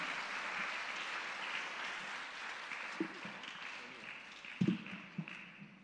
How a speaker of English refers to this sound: Let's put our hands together as we give a round of applause to all the cast for the performance, and especially to this wonderful and talented husband and wife duo of